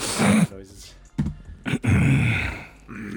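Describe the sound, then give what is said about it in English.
A man makes a series of low, strained grunts and groans, two longer drawn-out vocal bursts separated by short sharp huffs, fairly loud with no clear words. “Like grunting.”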